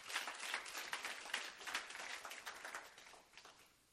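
audience clapping

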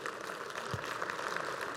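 audience applauding

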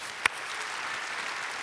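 audience applause

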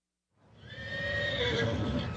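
horse whinnying

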